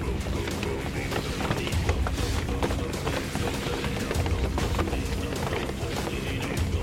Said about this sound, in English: It sounds like there are hundreds of something out there walking around. There's a lot more than hundreds, sweetheart.